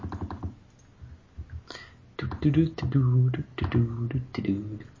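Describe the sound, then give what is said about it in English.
Rapid clicking of a loud computer keyboard being typed on, a flurry of sharp keystrokes up front that keeps tapping faintly as a person starts talking over it. “It sounds like you're typing on the biggest keyboard.”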